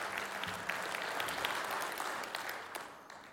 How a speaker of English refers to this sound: Why don't we give the Lord a big round of applause this morning? That was awesome.